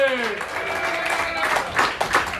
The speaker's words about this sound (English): All right, please, clap.